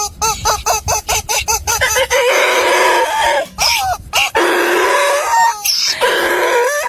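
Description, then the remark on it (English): A donkey's call opens with a quick run of squeaky, rubber-chicken-like honks, then gives way to loud, harsh braying, several rasping hee-haw cycles with short breaks between them and no talking. “In case you're not familiar with the donkey sound, the first sound you'll hear will be the rubber chicken kind of squeaking.”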